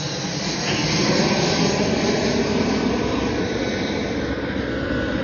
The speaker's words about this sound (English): the helicopter the airplane that's landing now that wants to fly directly above me.